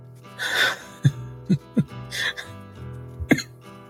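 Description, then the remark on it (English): Harsh, raspy coughing from Nylus, crawling behind, comes in a few irregular bursts, with short choking, gulping catches in between. The coughs sound fairly loud, with no talking. “Before you hear Nylus start to crawl behind you is when you can really start to hear him cough up as well.”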